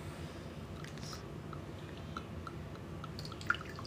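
Liquor pours into a glass for a shot in one continuous, soft splashing stream, quiet, with a faint click near the end and no talking.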